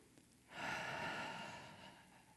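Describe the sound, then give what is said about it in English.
A crowd exhales together in one long, audible breath, a broad airy whoosh that swells abruptly after a brief quiet moment and slowly fades over about two seconds. “And why don't you try breathing so I can hear you up here?”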